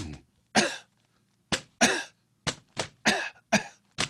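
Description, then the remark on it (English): A person coughs about seven times, sharp coughs spaced in a deliberate, roughly rhythmic pattern, some coming in quick pairs, with silence between them and no talking. “I can drop a notebook and cough”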